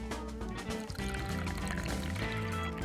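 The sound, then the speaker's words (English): Afternoon coffee glugs and splashes steadily out of a thermos into a cup in a radio studio in Smithers, a continuous pour lasting a few seconds with a low hum underneath. “And in fact, you can even hear me pour my afternoon coffee.”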